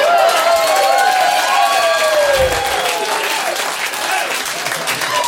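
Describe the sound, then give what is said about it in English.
A crowd claps and cheers loudly and steadily for several seconds, with whoops and scattered voices rising over the dense wash of applause. “That's the dumbest applause break I've ever got!”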